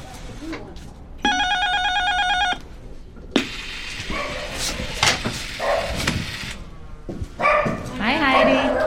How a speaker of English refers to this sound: Her cat Romeo and her dog Stella, an old chow mix with three legs.